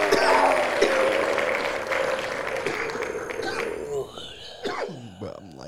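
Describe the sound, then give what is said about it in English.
A voice imitates a cheering crowd with a loud, breathy, sustained roar lasting several seconds that gradually fades, followed by a short burst of speech. “And the crowd goes wild.”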